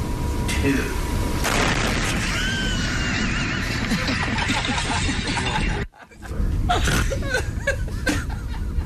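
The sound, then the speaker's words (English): A loud explosion sound effect bursts in after a moment and rolls on as a long, crackling rumble. It cuts out briefly, then more blasting and noise follow, with voices and laughter mixed in. “I thought you were going to hit like a car crash or something like that, but the explosion was much better.”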